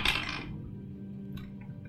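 A small ten-sided die (a D10) is rolled during a tabletop game and clatters across a hard surface in a bright, quick rattle that fades within half a second, followed by a couple of faint ticks as it settles over a low steady hum.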